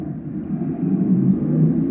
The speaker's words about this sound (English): The motorcycle going by.